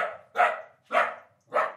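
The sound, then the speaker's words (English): A dog barks in a steady rhythm, three loud, sharp barks evenly spaced about half a second apart, following the tail end of an earlier one, with no voices. “But if you were teaching a computer to tell those sounds apart, how would you go about telling it what makes something very clearly a dog barking and what makes something else a baby crying.”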